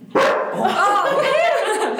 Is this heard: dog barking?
yes